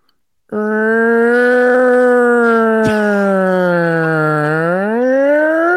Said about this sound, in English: It's like the 1960s police car coming to get